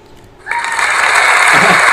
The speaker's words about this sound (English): Hey, Google. Clap your hands.